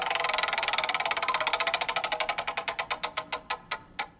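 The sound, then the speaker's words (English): A game show prize wheel is spun to pick a category, with a fast, dense run of ratcheting clicks that gradually spread out and slow down until the last few distinct ticks as it comes to rest. No one speaks. “All right, now we're going to spin the wheel and get you a category”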